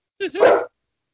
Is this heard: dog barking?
yes